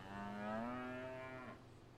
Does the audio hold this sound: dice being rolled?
no